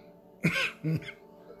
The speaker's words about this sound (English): Can't get through nothing without coughing either.